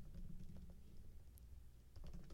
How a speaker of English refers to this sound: I'm recording my podcast as we speak and typing to you.